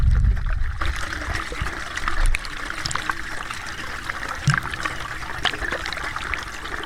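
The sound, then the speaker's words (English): Thick, chunky sewage of fecal matter sloshes and trickles steadily through a toilet drain pipe, a continuous wet gurgling flow with a few louder splashes, with no talking. “That is not water. That is fecal matter.”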